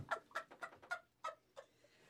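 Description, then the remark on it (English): A bird repeats a short, harsh clucking call about seven times in quick, slightly uneven succession, fairly loud, with no chirping and nothing else audible. “So the birds, instead of chirping, are going to be sitting there all fucking day long doing that shit.”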